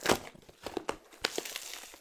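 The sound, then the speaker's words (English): Gift wrapping paper crinkles and tears open, a quick run of irregular crackling rips and rustles with no one speaking. “Have you been working out? Because that just tore like paper. Oh, it's gift wrapped.”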